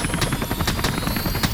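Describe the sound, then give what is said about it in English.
A helicopter carrying Marines roars as it touches down under heavy fire, its rotor chop thudding steadily over a dense, constant engine rumble and high whine. No voices are heard. “The first helicopter touches down, and 20 Marines jump from the aircraft and form a protective ring around it.”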